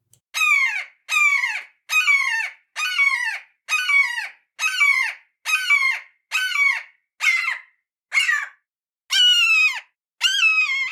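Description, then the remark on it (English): A red-shouldered hawk calls repeatedly, about a dozen loud, descending screaming notes in a steady rhythm, each separated by a brief pause, with no other sounds around them. “Some live in the woods, like this red-shouldered hawk.”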